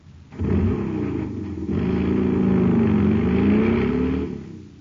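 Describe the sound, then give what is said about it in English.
A jet cycle engine, supercharged with super fuel, roars steadily for several seconds, a strong low growl with rising and falling harmonic tones like revving, starting abruptly and fading at the end, with no talking. “Man, that cycle's roaring like a rocket now because it's supercharged with super fuel.”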